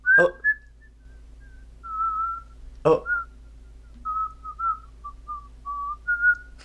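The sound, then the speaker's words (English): Someone whistles a short melody, clear, with sustained notes sliding between pitches and two sharp percussive clicks or claps punctuating it. No talking. “she said I can whistle, bitch.”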